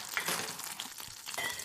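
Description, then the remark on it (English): Eggs sizzle steadily in a frying pan during the Kyle in the Kitchen segment, a dense, crackling hiss with small pops scattered throughout, moderately loud, with no voices. “giving uncomfortable words over the sound of sizzling eggs, but always a good time.”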